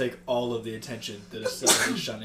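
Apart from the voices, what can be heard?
sneeze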